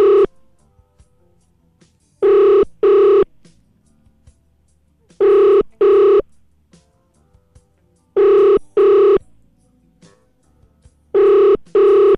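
A phone line's ringing tone heard from the caller's end on a repeat call to someone who had not picked up, repeating in four steady double pulses about three seconds apart, clear and prominent with near-silence between rings and no one answering.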